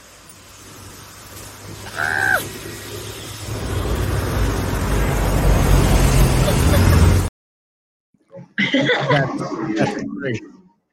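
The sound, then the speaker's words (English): Trucks rumble past on a roadside with no sidewalks, where a person walks along the side of the road; a low roar swells steadily louder, with a brief high squeal early on; after an abrupt cut, a person briefly talks and laughs. “The second one is scarier because trucks are coming by.”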